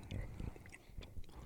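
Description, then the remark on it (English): Someone chewing a hard, tough candy: irregular low, muffled crunches and sticky clicks in uneven bursts, fairly quiet, with no clear talking over them. “Now I got to chew through this before I can know, actually...”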